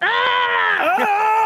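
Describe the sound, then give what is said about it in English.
A woman lets out one loud, sustained, angry yell lasting about a second and a half, strained, with her pitch wavering near the end and no other voices. “Yell for us.”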